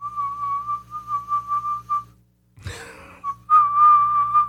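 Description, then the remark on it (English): A man whistles a single steady note, an F sharp just above middle C, held at one pitch and pulsing slightly, then a brief pause with a breathy rush of noise before the same note resumes, louder and sustained. No one speaks. “Now, this only occurs at night, and they describe it as a male whistling a single note, and then he, like, kind of takes breaks in between.”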